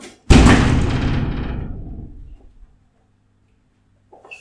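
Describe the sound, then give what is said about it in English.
A sudden, loud bang as an empty box is hurled at a bug against a glass door, followed by a rattling, ringing tail that fades out over about two seconds, then quiet. “You're gonna throw an empty box at a bug?”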